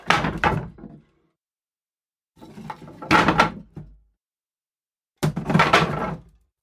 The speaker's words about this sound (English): The double doors were old and heavy, but Tom was a big cat and he could shake them slightly when headbutting them.